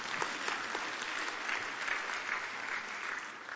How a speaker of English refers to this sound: Yes, you must clap to that. Yes, you must.